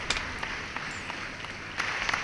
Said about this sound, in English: Yeah, we ain't had that in a while. We ain't had the applause in a while either.